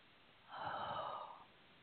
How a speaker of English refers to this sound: Releasing through the yawning, opening up the channel.